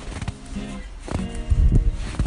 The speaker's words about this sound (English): As I explored everything the Arboretum had to offer, I paused frequently to be mindful of the sounds that surrounded me. The snow crunching under my boots.